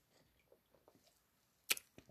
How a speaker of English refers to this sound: I'm drinking my Coke. So if you hear me taking a sip, that's what that is. Or you hear me pausing That's what that is. Okay. So let me take a sip real quick.